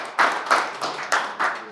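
Applause from a small group, heard as about five distinct, evenly spaced claps at moderate loudness with no voices over them.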